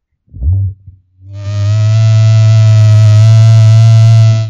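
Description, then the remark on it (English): A candy cane vibrator switches on after a short rumbling bump and holds a loud, steady, low-pitched buzz with a rich harmonic drone, running evenly to the end with no voices. “But it's got a lower buzzing, you know?”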